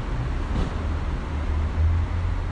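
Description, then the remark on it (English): A steady low rumble of cars idling at a passenger pickup line on a Friday, waiting until they have three people inside before pulling away, with road traffic and a brief swell of engine noise partway through; no one speaks. “So with more drivers than passengers, the cars wait. As soon as they get to three people in the car, they take off.”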